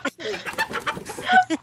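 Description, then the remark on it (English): A chicken clucks in a rapid, agitated run of short squawking bursts, fairly loud, with faint background hum throughout. “I think my mother just ran over a chicken.”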